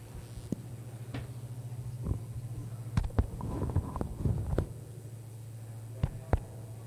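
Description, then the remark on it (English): A steady low electrical hum from a sound system drones continuously, with scattered clicks, thumps and brief rustling noises breaking over it; nobody speaks. “You guys hear that humming?”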